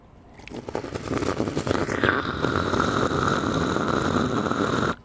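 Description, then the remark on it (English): An imitation of a water bong: air is bubbled through water in a loud, rumbling gurgle, choppy at first, then a steady bubbling rush with a faint whistly tone until it cuts off abruptly. “I can do a bong sound with this water, if you want.”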